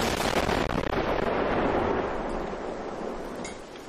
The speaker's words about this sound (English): There are three celebration noises if you score a goal. There's a commentator shouting goal. Goal! Yeah. There's a honk. Yeah. And there's a firework.